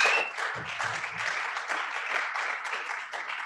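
A crowd applauds steadily, a dense wash of clapping that holds at an even, fairly loud level throughout, with a few faint low voices beneath it.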